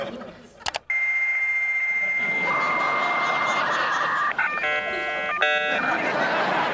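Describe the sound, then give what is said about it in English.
A dial-up modem connects to the internet, as when Kitty and Red sign on with their first computer in That '90s Show: a couple of sharp clicks, a steady high tone, then a loud rushing hiss of screeching static broken by stacked warbling, chirping tone bursts near the end. “And it shows them getting their first computer and signing on to the internet. And there's that sound.”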